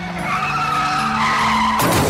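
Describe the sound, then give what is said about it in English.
A loud, sustained screech of a bus's tires skidding sideways through an intersection holds steady for nearly two seconds, then breaks off into a rough burst of noise, with no voices present. “And that's when I heard the screeching tires.”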